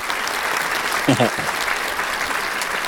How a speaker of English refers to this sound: You get applause. I appreciate those said applause. Yeah. It's nice to have some crowd, to be in front of some type of crowd, even if it's fake.